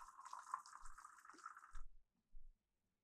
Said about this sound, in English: I'm going to pour some more of this. Yeah, pour some wine. Oh, I love that sound.